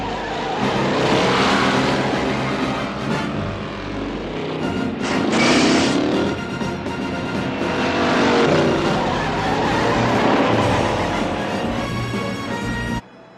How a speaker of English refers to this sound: What'd you think of this Pontiac that John Wayne had? That was quite a car. That thing was awesome, man. The sound of the engine